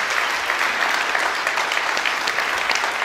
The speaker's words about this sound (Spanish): ¿Se acuerdan el aplauso de qué? De golf, ¿verdad? O de ópera. Así bien, pasito.